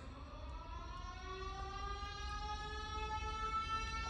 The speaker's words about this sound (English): It's been a long time since I hit those sirens. I wanted to hit the sirens for you.